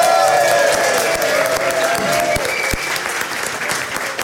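A crowd bursts into steady, dense applause, many hands clapping together in a continuous crackling wash that holds its loudness for a few seconds, with a faint tonal hum beneath.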